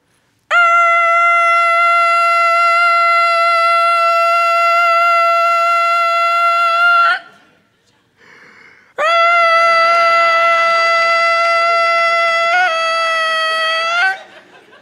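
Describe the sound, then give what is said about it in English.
A loud horn sounds a long, steady, brassy blast for several seconds, then after a short break with a faint breathy noise, a second sustained blast follows that wavers slightly before ending. “And then one long blast.”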